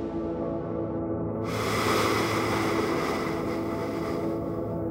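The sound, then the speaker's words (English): A loud rush of ocean surf swells up after a moment of quieter rumble, then keeps roaring steadily like crashing waves, with no voices. “He's in the ocean and he's about to drown when a wave turns into a giant cloud of vapor.”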